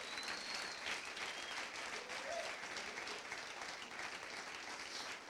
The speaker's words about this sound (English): Come on, give the Lord a hand clap of praise this morning.